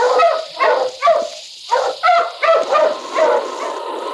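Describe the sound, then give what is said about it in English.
A dog, King, Sergeant Preston's wonder dog, barks loudly, roughly eight sharp, excited barks in quick bursts with a brief pause midway, over a steady faint hiss in the background. “Now back to the days of the gold rush when Sergeant Preston and his wonder dog King battled through storm and snow to preserve law and order as they met the challenge of the Yukon.”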